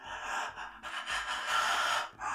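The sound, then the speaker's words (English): A voice imitates harsh, raspy monster breathing, two or three loud, strained breaths in a row, noisy, with no words spoken. “This is like very like this really harsh breathing, like really, really loud.”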